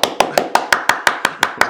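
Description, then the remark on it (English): An axe strikes the ground again and again as Haldor grabs the handle and brings it back down to the ground: about ten sharp, sturdy thuds in a fast, steady rhythm, each with a brief ringing tail. No voices are heard. “But it is coming around, and sort of you guys, sort of in slow motion, you see Haldor up, grabbing the handle and coming back down to the ground with this axe.”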